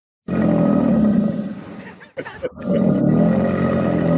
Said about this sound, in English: That is our Florida Gator sound, and we are going to talk Florida Man.